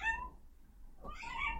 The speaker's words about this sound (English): I don't know if you just heard my cat.